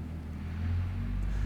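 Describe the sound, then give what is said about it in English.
A steady low engine rumble fills the background, a truck droning continuously and growing slightly louder, with no voices present. “Even the limitation of this truck making noise in the background, the silence within me is still there, regardless of whether this truck is making noise or not.”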